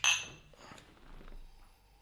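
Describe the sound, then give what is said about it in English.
Two glasses of a 108-proof spirit clink together once in a toast at a tasting, a bright chime that rings briefly and fades. “Alrighty, let's give this a taste. As always with our tastings, we're going to start with the nose. Cheers. Cheers.”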